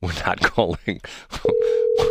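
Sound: telephone dial tone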